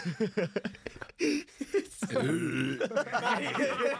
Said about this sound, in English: That is a burp.